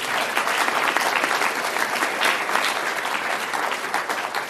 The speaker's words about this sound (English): Let's give them another round of applause, all of them.